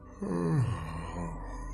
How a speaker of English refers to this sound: I yawn.